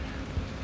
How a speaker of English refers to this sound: that was a good old raindrop. Let's find a little, you know, pocket that doesn't actually get wet over here.